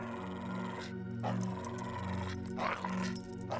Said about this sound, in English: She's probably scared and territorial. I think those are usually the reasons dogs growl.